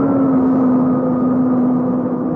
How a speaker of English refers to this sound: Plane's coming to a halt.